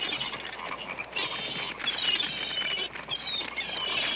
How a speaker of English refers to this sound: And the frogs are marching in right behind them. So the people are running into a building. There's birds flapping around everywhere. And frogs start jumping in all over the place.